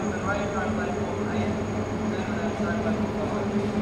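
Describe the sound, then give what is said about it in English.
The last train pulls away from a station, a loud, steady mechanical rumble with a low engine drone and a thin high whine throughout, indistinct voices mixed into the noise. “Okay, that's the last train going.”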